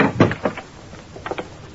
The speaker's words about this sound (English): But as I opened the door to my apartment... Hiya, pal. Come on in and close the door.